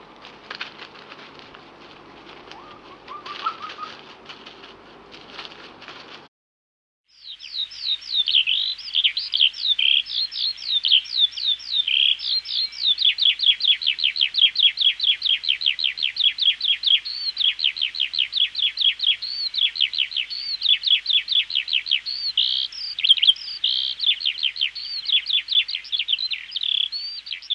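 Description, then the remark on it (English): British wild birds calling, a recording from the British Wildlife playlist on SoundCloud: a few faint chirps over steady hiss, a short silence, then a long, loud run of rapid, high-pitched repeated chirps that keeps up a fast, even rhythm. “The other sounds in here have all come from that British Wildlife playlist on SoundCloud.”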